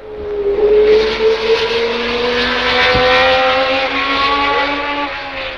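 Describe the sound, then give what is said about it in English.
Loud, continuous roar of racing car engines at the 1973 Le Mans endurance Grand Prix, their whining pitch climbing steadily as they accelerate, with several engine tones overlapping and no voices. “The 1973 Le Mans, the golden jubilee of this classic Grand Prix of endurance.”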